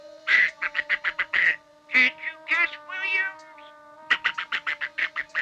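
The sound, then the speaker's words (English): A killer in a film speaking in a nasal, duck-like quacking voice sputters out rapid strings of squawky syllables, pausing briefly between bursts before another fast, chattering run of quacks, loud. “Forget all the gore and stuff, which I still enjoyed, but the duck voice is absolutely hilarious.”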